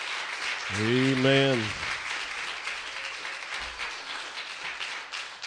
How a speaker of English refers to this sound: Give the Lord another good hand clap of praise.